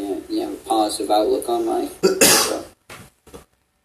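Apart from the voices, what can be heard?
cough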